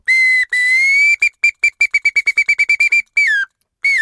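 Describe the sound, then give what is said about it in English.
A bamboo bird whistle plays a song sparrow's song, demonstrating variations in the song of a single song sparrow: two long clear notes, then a rapid run of about a dozen short, evenly spaced chirps, ending with a downward slur. Bright and loud, with no talking. “In this show, we use a bamboo bird whistle to demonstrate variations in the song of a single song sparrow.”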